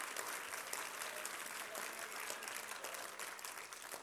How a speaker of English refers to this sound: Can you clap your hands unto the Lord? Hallelujah. Thank you, Jesus.